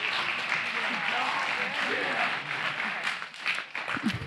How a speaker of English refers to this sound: We're all back together again. Isn't that nice? Let's give a clap.